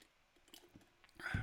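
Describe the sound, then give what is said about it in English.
Quiet mouth sounds: a few soft wet clicks, then a louder slurping gulp near the end, like someone taking a sip of water. No one speaks. “Take a sip of water before we get started.”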